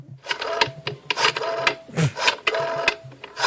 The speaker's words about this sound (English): Oh, I love that rotary phone. That's so cool. So retro. Glad CMC has this.